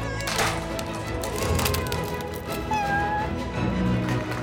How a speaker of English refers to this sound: Sir, my kitten is in that tree.